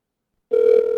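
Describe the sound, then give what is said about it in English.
A steady electronic telephone ringing tone on an outgoing call starts abruptly halfway through and holds at moderate loudness, a single sustained buzzy pitch with harmonics, with no talking. “It's ringing.”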